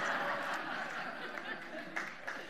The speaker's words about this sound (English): There you go. You know what that was? That was a courtesy clap. And that's really nice of you guys, so appreciate that.